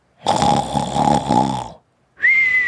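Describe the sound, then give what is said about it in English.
A person imitates a loud snore, one long rattling inhale lasting over a second, followed after a short pause by a high whistling exhale. Clear, with no talking. “We should get some real snoring.”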